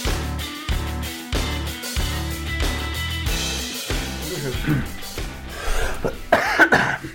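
A short instrumental music sting plays, then near the end someone clears their throat once, fairly loud, over the fading music.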